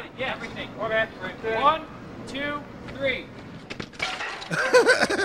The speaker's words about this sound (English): They just threw stuff at the bike. Very good. That's funny. That's what car wax is for. Keep talking about what's going on. So they threw like a bowling pin at it, and now that's like some goldfish crackers. Now some rice.